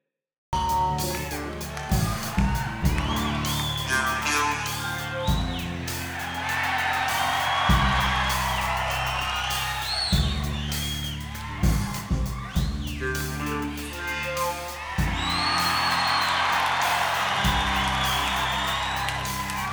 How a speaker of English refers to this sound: And the crowd goes fucking nuts right before he like starts to do like the talk box. Yeah, exactly. And the crowd just goes mental.